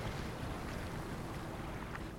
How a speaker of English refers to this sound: Okay, well, maybe you should lie on your back for the duration of the boat ride. Keep your fins and legs in the boat at all times.